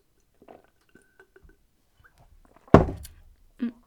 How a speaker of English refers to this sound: We also have, excuse me, I need to take a sip of water.